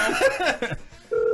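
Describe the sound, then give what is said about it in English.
A steady electronic ringback tone of a phone call to McDonald's, ringing on the other end, starts loud at the end, following a moment of muffled voices. “did you notice their rings sound like American rings?”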